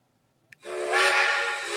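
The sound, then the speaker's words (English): A steam train whistle blasts loud and close after a brief click, holding one long breathy, hissing tone that fills the rest of the moment with no voices. “All aboard! We're hopping on the Robbie Ray fade train here.”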